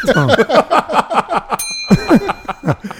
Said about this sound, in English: You got to give a deeper gong. All right. There it goes.